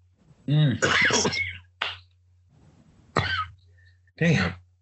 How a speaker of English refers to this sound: Damn, dude, you sound like you're getting sick, man. Yeah, man, it's just dry cough, man.